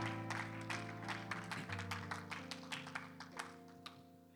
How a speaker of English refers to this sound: Clap your hands to the Lord as you're seated one more time. Just give God some praise. Thank you, Jesus.